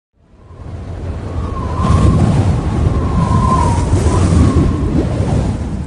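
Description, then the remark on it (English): A steady, loud roar of wind builds up in the first second and then blows continuously, with faint whistling tones drifting in and out. No voices are heard. “As the winds roared,”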